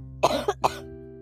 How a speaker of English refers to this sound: I have another cough coming.